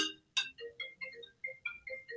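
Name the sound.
mobile phone ringing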